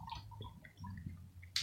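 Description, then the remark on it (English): Quiet gurgling drips from a coffee maker over a low steady hum, with scattered small plinks and a short hissing burst near the end. “Coffee making drip.”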